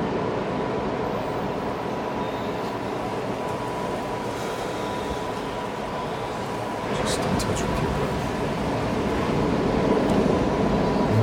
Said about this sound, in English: It could be a recurring sound in the space you're in. It could be this ocean sound if it's coming through okay.